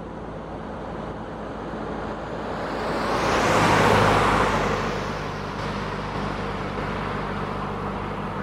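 A car drives past and turns a corner, its road and engine noise swelling to a loud peak mid-way before easing off into a steady low rumble as it moves away. No voices.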